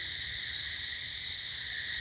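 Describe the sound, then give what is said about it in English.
A bullfrog calls low and steady at night beneath a constant, shrill drone of insects, a continuous outdoor chorus with no voices. “Well, I hear the bullfrog, but I also hear my favorite toad.”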